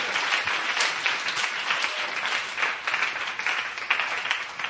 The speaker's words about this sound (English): Praise the Lord. Let's give the Lord a clap offering of praise. Hallelujah.